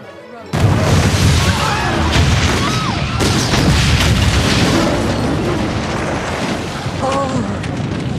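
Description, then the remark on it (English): Fireworks go off in a loud, dense barrage, with booms, crackles and whistling bursts following one another continuously for several seconds after a sudden start. “Oh, fireworks, lovely.”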